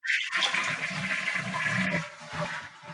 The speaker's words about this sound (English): I think we need to do one last flush